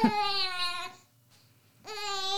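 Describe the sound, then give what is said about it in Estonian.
A baby babbles loudly in two long, strained, high-pitched vocal outbursts separated by a brief pause, sounding close to crying, with no other voices. “võtab väga kõva häälselt sõna.”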